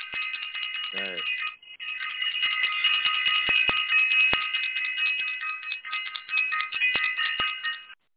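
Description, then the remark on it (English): A bright, continuous electronic bell, rung for self-invested, rings steadily for about eight seconds, layered high tones holding nearly unchanged, with a quick falling sweep near the start, a brief dip, and scattered faint clicks. “Please ring the bell for self-invested again.”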